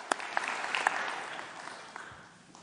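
A crowd applauds with dense, steady clapping, a few sharper individual claps standing out early before the sound gradually thins and fades over a couple of seconds.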